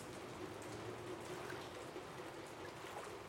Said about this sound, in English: As rain pours down, the streets slowly begin to fill with water. Streetlights go out. Traffic becomes even more congested and chaotic.